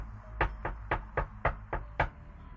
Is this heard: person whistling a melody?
no